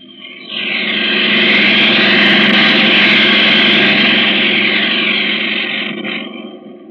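A steady airplane engine drone swells in after a brief quiet start, holding a thick, broad roar with a low hum underneath before easing slightly toward the end, with no voices. The plane is in flight from New York toward Black Rock, 1,000 miles away, as darkness approaches.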